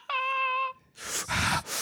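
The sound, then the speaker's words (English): A short, high, whiny voiced tone, then a voice imitating a man with asthma breathing really hard: two loud, rasping breaths, alone with no talk. “He has asthma. He's like breathing really hard.”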